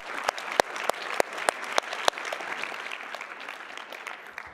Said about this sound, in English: And we've had 45 people raise their hand and say they want to trust Jesus for the first time. You can clap.